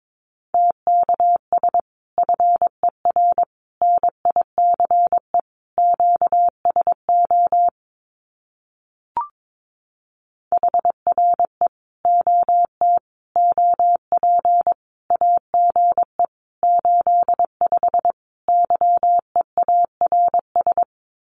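Morse code of common QSO phrases sent at about 22 words per minute: a single steady mid-pitched tone keyed into quick dots and dashes, with a short pause and a faint click partway through. No voices.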